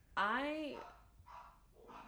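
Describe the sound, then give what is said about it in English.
A small dog left outside by himself barks, one loud, drawn-out yelping bark followed by two shorter, softer barks spaced about half a second apart. “The little dog doesn't like to be outside by himself, and so that's why he won't quit.”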